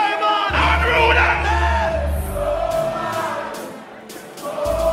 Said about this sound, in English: The crowd is going nuts.